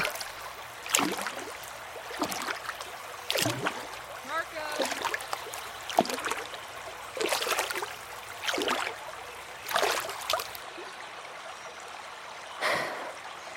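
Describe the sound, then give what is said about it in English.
Water of a great, winding river flows and washes in a series of rhythmic, rushing surges roughly every second or so, over a low steady background murmur. No one speaks. “I have spent my life in the shadow of this great and winding river.”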